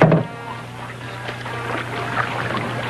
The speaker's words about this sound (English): There you hear the boat hitting the dock.